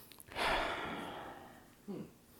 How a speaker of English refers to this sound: Alright, let's give this a little sniffy sniff, a little tasty taste, see what y'all think about it.